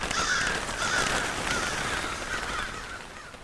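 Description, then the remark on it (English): A crow caws repeatedly, a series of harsh, raspy calls in quick succession, fairly loud against a steady outdoor background hiss, with no one talking. “So corvids specifically are very smart birds.”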